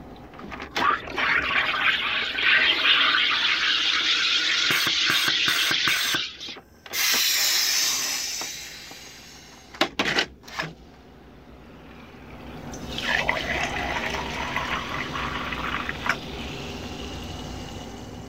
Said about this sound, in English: The sound you just heard is the sound of my dad's soda stream.